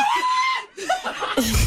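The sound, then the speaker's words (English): A loud, high-pitched scream holds one shrill note for about half a second, cuts off briefly, then resumes as wavering, breathy cries that could edge into frantic laughter. “And I screamed the highest pitched scream.”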